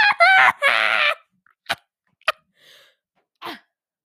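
real cough

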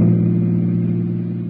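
car driving

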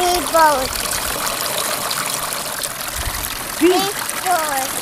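water trickling

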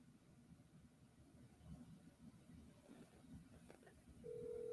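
telephone dialing and ringing

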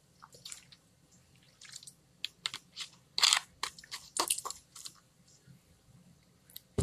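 drinking water

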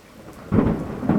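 thunderstorm

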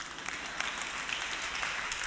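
audience clapping

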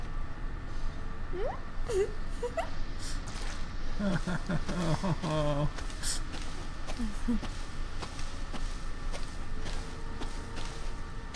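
dog whimpering

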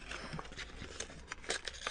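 paper crinkling

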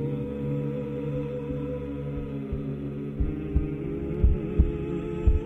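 heartbeat

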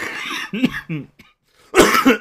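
coughing and throat clearing

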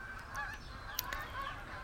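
geese honking

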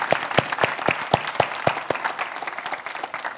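audience applauding

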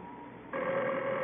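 telephone ringing

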